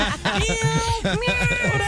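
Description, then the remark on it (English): In an office, as part of a game, a person imitates a cat, voicing a few whiny, wavering meows with rising and falling pitch, fairly loud, with other voices chattering underneath. “A cat?”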